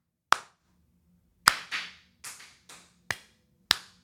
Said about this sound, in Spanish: Ahí está. Ahí, rítmicamente aplaudiendo.